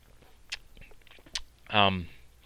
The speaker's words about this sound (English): Anyway, let me just take a sip. That sounds all kinds of wonderful.